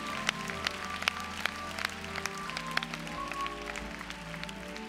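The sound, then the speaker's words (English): An audience claps along in praise in a steady rhythm, sharp hand claps cutting through a sustained, humming backdrop of low tones, like music or singing, at moderate volume throughout. “Clap your hands and give praise.”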